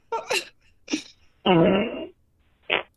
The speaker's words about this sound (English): I don't know if you hear that. I think that's a shart. I think that's a fart. That second shot there is a fart. Or a shart.